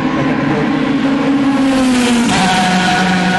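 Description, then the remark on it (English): A Ferrari race car roars past at speed down the start-finish straight of a race circuit, its loud, high engine whine holding steady before the pitch drops sharply as it passes. No one speaks. “A Ferrari.”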